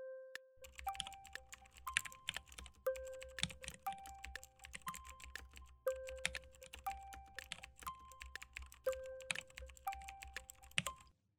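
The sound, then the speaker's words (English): Fast, continuous typing on a computer keyboard, with dense crisp clicks for about eleven seconds over a low background hum and faint recurring tones. No one speaks. “A good sounding keyboard too, by the way. This is a great sounding keyboard.”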